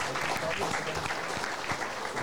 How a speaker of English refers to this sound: For those sponsors, just a quick round of applause. They helped out tonight. Appreciate it.